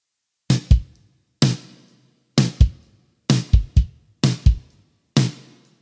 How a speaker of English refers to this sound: with the kick and snare, it sounds like this.